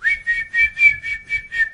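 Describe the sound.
Someone whistles a short melody, about seven quick, evenly spaced notes at a fairly steady pitch, with no talking.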